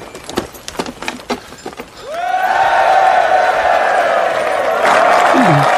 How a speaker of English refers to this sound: German lieutenant is really suspicious, and then all the Scottish ones start clapping and cheering for the music.